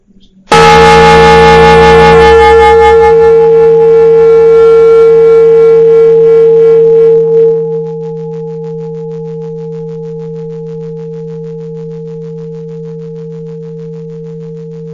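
A single meditation bell is struck once to begin a metta vipassana meditation practice session, ringing out loudly with a bright, shimmering attack, then settling into a low, steady hum that lingers and slowly fades over many seconds.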